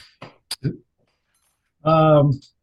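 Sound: ice clinking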